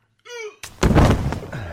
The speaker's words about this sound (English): He's knocked out. Hit his head against the corner of that cabinet.